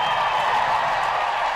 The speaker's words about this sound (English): And the crowd's back to life here.